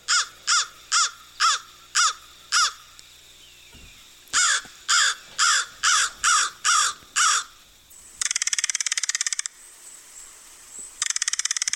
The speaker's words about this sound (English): So here are some expert tips on the sounds they make, brought to you by our friends over at the Macaulay Library. Okay. So this is the American crow.